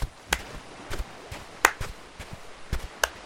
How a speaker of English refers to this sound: As soon as you approach the Tide Pod, you hear some clapping. Just a very slow...